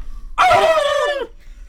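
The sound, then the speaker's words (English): A loud turkey gobble bursts out for about a second, a harmonically rich call that wavers and slides downward in pitch before cutting off, with no talking around it. “I think that was two turkeys.”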